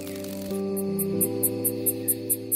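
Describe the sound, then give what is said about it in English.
A cicada buzzes in short, evenly spaced high-pitched pulses, about four or five per second, over a soft, sustained musical drone. No one speaks. “Good night, Cicada.”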